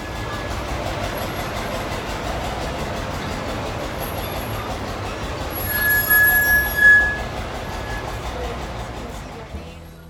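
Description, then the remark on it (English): A train on a 3-kilometre round-trip railway ride from St. Nicholas Abbey rolls along with a steady rumble, and partway through a single sharp, high-pitched wheel squeal rings out for about a second before fading back into the clatter. “the owner of the railway”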